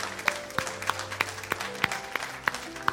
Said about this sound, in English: Men, if you were involved in that, the men that were involved in that, why don't we just clap and say we're grateful for that.